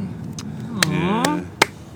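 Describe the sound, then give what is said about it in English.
Several sharp hand claps land at irregular intervals, crisp and loud, over a voice that murmurs and laughs in the background. “Sorry, I didn't mean to clap there.”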